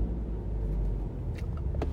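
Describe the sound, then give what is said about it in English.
A Mercedes-AMG GT sports car engine rumbles steadily, a deep low idle that holds for the whole moment, with a couple of faint clicks or taps on top and no one talking. “Looks like a $100,000 plus Mercedes AMG. I think it's the GT AMG.”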